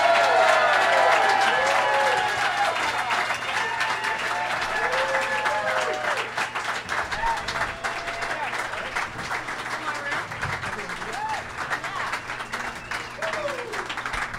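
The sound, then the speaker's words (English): A San Diego crowd applauds steadily with dense, continuous clapping, joined by scattered cheers and whoops, welcoming three guests; the ovation starts loud and tapers slightly while a voice speaks briefly over it. “I heard some Santee claps in there, and I do not...”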